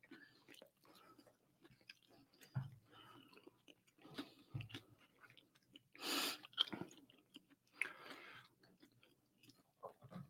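Wet chewing and crunching sounds repeat irregularly, with soft mouth clicks and a louder burst of noise partway through; no one speaks.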